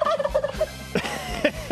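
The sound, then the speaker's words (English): A turkey called Turkey Tom gobbles loudly with a rapid, warbling rattle, followed by two or three shorter gobbling bursts, with no voices in between. “Three beeps in Turkey honor Tom of a three. Turkey Tom does not like it.”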